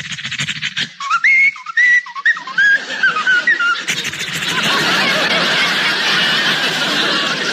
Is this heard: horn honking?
no